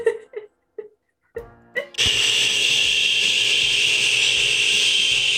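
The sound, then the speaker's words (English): A few short voiced sounds give way to a loud, steady hiss, a voice imitating radio static as the thoughts of a snail called Beefy Boy in a tabletop role-playing game, holding without a break for several seconds. “You just hear static.”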